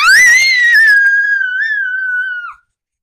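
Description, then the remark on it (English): A child lets out one long, loud, high-pitched scream, wavering slightly before trailing off after about two and a half seconds, a voice imitating a dragon's howl. “Okay, I want to hear your best dragon howl.”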